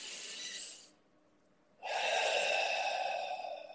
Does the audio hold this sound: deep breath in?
yes